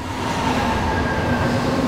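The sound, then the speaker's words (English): A train rumbles steadily along the rails, a dense low roar with faint metallic tonal whines running through it, loud and continuous with no voices. “And through all of these run a single train. It's called the migrant train.”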